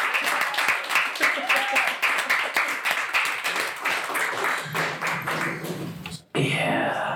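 An audience at a live show breaks into sustained applause for the show's guest, dense overlapping claps rattling steadily for several seconds before cutting off abruptly, followed by a brief swell of crowd noise.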